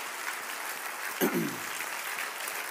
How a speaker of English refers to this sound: Clap your hands to the Lord and give him praise tonight.